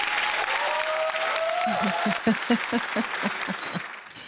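audience applause

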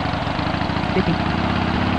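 engine revving

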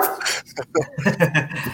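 dog barking

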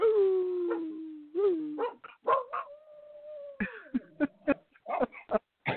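dog howling

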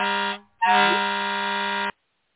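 air horn blast

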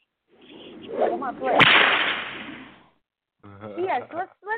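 whip crack sound effect

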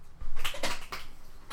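hand clap

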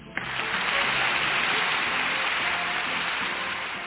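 audience applause

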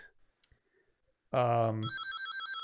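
phone notification ringtone

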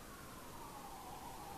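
police siren

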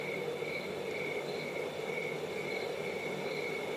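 crickets chirping at night

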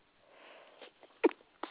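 sneeze

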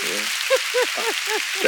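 applause sound effect

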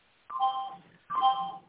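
timer going off

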